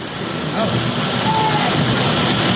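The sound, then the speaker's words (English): A steady, loud rumble of the passing 9:30 a.m. train fills the whole stretch, with a faint high whine rising and fading partway through. “We're just enjoying the sound of the train.”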